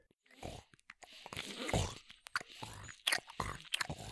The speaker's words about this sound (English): He chewed some grass out the side of his mouth.